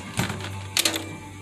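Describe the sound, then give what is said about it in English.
Puzzle pieces being handled, with a couple of brief clicking, rattling bursts over a low steady hum, then quiet shuffling. “I fucked up this puzzle.”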